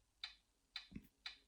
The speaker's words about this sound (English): So it gives this ticking to alert you that the camera is on.